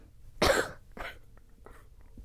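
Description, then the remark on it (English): A strong cough bursts out, followed by a softer second cough and a few faint throat sounds, with no talking. “Cough, cough.”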